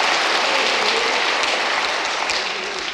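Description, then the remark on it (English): A church audience claps on Resurrection Sunday in sustained, dense applause, a loud steady crackle of many hands with no individual beats standing out, tapering slightly toward the end. “Come on, if you're gonna clap, do it with all your heart.”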